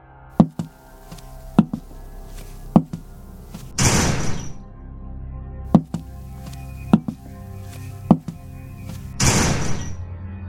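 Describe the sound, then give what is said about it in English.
A series of sharp, hollow bangs as stall doors are slammed open one after another toward the last, at uneven intervals, with two longer rushing, scraping bursts between them. No talking. “The sound went on as each stall door towards the last was banged open.”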